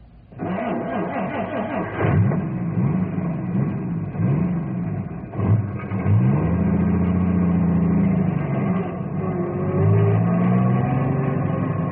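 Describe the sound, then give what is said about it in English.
A heavy truck engine rumbles steadily as the truck, loaded with people, drives across ice, its pitch rising and falling in repeated revs as it labors along, with no voices present. “Ice strong enough for cars, but not for truck. Yep. Especially a truck loaded to the gunnels with people.”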